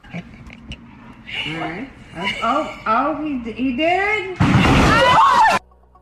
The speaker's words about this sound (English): Oh, he did it. So there you go. That's somebody's dad smashing into a telly because they jumped into it whilst doing virtual reality.